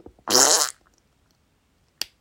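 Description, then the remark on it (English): A single loud, buzzy fart noise lasting about half a second, unaccompanied, followed after a short pause by one brief sharp click. “That fart noise was harder to get out than I wanted it to be.”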